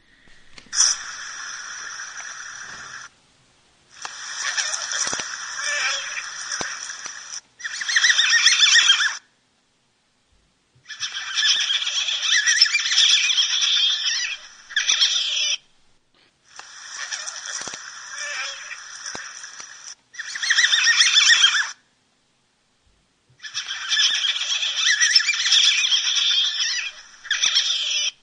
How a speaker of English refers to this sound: And so if you'll bear with me, I have a, of course, because people love river otters, there's a clip here of just some of the different various vocalizations that North American river otters will make.